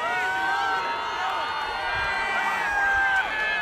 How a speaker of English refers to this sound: SpaceX launched the largest rocket ever made from its South Texas facility as a crowd of people on Isla Blanca Park cheered.